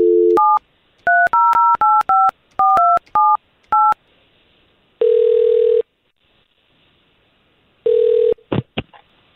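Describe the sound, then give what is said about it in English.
A rapid string of touch-tone beeps as a phone number is dialed by morning radio show hosts in Central Florida, roughly ten key presses, followed by a steady ringback tone sounding twice on the line. No one speaks. “All right, let's make that phone call then.”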